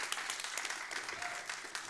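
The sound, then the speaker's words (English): Thin, scattered audience applause fills the stretch, a steady patter of light claps without strong peaks, fairly subdued overall, with a faint voice briefly audible underneath. “It's a weak clap, but that's okay.”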